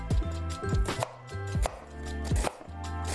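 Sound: knife chopping an onion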